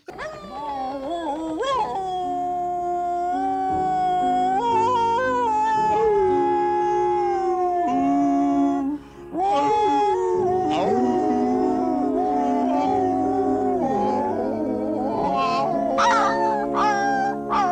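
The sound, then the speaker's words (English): A chorus of dogs at a pound howling, performed by one voice actor imitating them for a film: long, wavering, overlapping howls that rise and fall continuously, loud, with a brief pause midway. “He was also the howling of all the dogs at the pound in Lady and the Tramp.”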